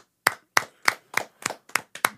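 Seven sharp hand claps in a steady, even rhythm, about three per second, crisp, with no voices over them.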